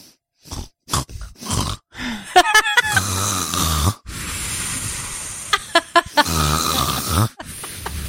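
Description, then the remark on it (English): A person imitates their own snoring, making several loud, rattling inhales broken by snorts and short breathy exhales, in an uneven rhythm with brief pauses and no talking. “I don't snore that bad.”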